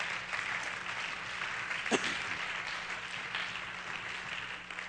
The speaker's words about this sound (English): Why don't we all give our guest a hand clap today?